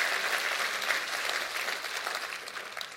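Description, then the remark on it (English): An audience claps hands together, a dense, steady wash of many overlapping claps that stays fairly loud throughout, with no clear rhythm and no voices standing out. “Let's clap our hands tonight because strength and direction comes to our house tonight.”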